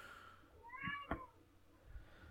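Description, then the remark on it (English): A single excited female Siamese-mix cat meows to be petted, a short rising-and-falling call with clear harmonics, with faint background noise and soft thumps around it and no one talking. “She gets excited, and so she meows at me until I pet her.”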